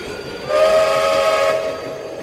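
A train whistle sounds a steady, harmonic blast for about a second over the continuous rumble of a moving train, loud, with no voices.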